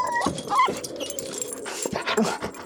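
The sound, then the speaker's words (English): A dog inside a metal kennel, which lies flipped on its side in the bed of a truck, scrabbles its claws against the metal door in a rapid, scratchy flurry, letting out a couple of short, high whimpers between bouts of clattering. No one speaks. “Nut hatches flickered through the yellowing trees, made frantic by the sound of claws against metal.”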